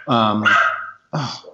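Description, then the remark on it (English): A dog barks twice: a long, drawn-out, high-pitched bark that trails off, then a brief pause and a second shorter bark, loud and alone with no talking. “Goddamn wolves.”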